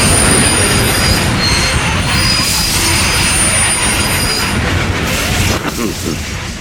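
A subway train roars by, a loud, steady rush of rumbling noise with high-pitched wheel squeals ringing above it the whole time, easing slightly near the end.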